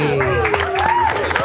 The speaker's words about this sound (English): As the crowd applauds